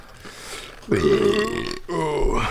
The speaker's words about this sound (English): Burp.